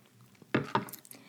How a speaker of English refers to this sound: Oh my god, here I am taking a sip without saying cheers. So cheers, guys, to, you know, this episode and to my next sip.